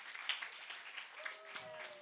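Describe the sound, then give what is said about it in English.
Audience applause and cheering for five salvations through the Alpha programme: a dense, steady wash of many hands clapping, with a few voices whooping and shouting over it, holding at an even loudness throughout. “Feel free to cheer any initiative.”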